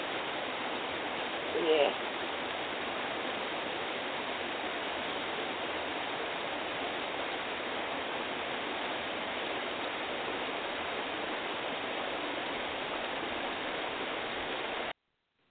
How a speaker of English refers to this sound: There are a couple of sounds of hope that we have identified, and one of the sounds is the sound of a waterfall.